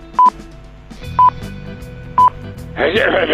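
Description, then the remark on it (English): Telephone speaking clock time pips: three short, identical mid-pitched beeps exactly a second apart over a faint voice-like murmur, followed by a loud burst of rough hiss. “And now, if you call the speaking clock, you'll get... On the third stroke, the time will be...”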